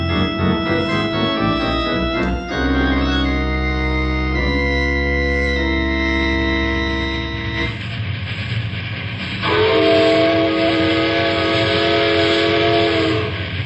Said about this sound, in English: lay off that whistle, Sam. No need for it this far away from civilization.